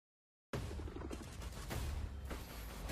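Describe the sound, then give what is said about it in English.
Heavy, rumbling explosions and booming impacts fill the sound after a brief silence, dense and loud with deep low-end thuds and crackling bursts, at the start of the Call of Duty Black Ops multiplayer trailer. “Intense and slow explosions at the beginning, like always.”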